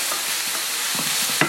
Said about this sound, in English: So again, give it a little bit of toss. Make sure it's all getting an even coating on the pan. And we're just going to make sure our chicken is cooked up.